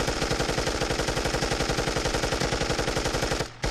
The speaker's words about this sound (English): But with gunshots.